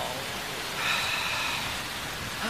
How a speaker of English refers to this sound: No, besides any minute now, it's gonna... Oh, please don't rain. Of course.